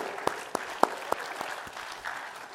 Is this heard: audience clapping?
yes